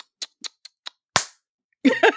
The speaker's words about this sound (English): Whoa. She gets his ass. She slaps him across the face.